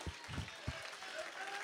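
An audience claps their hands in praise to God in a dense, steady patter of applause, with a few deeper thumps near the start and no clear voices on top.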